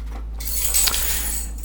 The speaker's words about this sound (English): Okay, and I'm going to put the cover back on, and the cover just kind of like snaps back on.